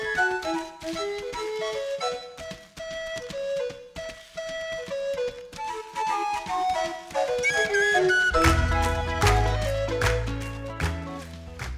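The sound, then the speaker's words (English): A bright penny whistle melody plays lively, rhythmic phrases, joined partway through by a fuller band with deep bass and percussion that makes the music louder and denser. “The penny whistle song runs with PK as he finds last night's opponent, Duma, who will convince him they will need to build a school.”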